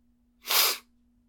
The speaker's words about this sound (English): That. That. A sniff. That'll do it.